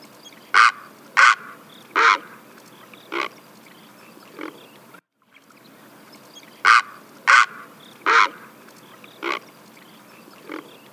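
A great blue heron's harsh, rattling call: a series of loud, rasping croaks that weaken toward the end, heard twice with a short silence between, and no talking.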